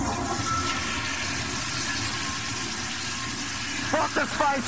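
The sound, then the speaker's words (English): A toilet flushes, a loud steady rush of swirling water lasting the whole few seconds, with a brief voice breaking in near the end. “You think I should flush this little bastard?”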